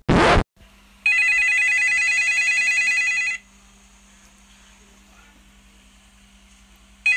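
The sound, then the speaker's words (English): A brief loud burst, then a newly bought mobile flip phone rings with a bright, warbling electronic tone for about two seconds before cutting off, leaving a faint low hum behind. “My new mobile that I just purchased. How do you work this flip phone?”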